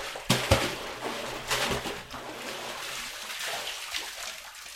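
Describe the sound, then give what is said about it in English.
A man draws water up from a deep well in the mountains of Mongolia's Gobi Desert region: splashy sloshing with a few sharper splashes early on, then steady trickling and dribbling throughout, with no one speaking. “Thousands of miles away, a man pulls water out of a deep well in the mountains of Mongolia's Gobi Desert region.”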